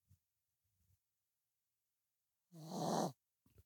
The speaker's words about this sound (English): Dude, that's snoring. Cuddled up to me every night. Like, I'll have to, like, put my knuckle underneath her in the middle of the night and, like, rotate it so she'll wake up. She needs a sleep apnea mask.